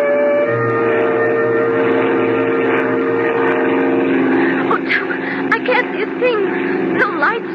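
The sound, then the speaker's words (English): A small airplane's engine drones loudly and steadily throughout, a continuous propeller hum, with voices talking over it toward the end. “I don't need lights to land.”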